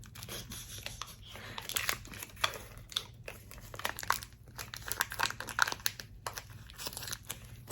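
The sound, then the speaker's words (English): Steady crinkling of a plastic wrapper from banana-flavored chewy candies, with irregular crackles and rustles continuing throughout, occasionally sharper and brighter, and no talking. “So I also got Thai chews.”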